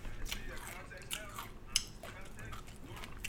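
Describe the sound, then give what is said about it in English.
Quiet mouth noises of someone tearing off a bite and chewing it, with wet smacking and one sharp snap partway through over a low background hum. “I'll just rip it piece by piece. It's like, oh my god. Yeah. Chewing it a bit, spit in the garbage.”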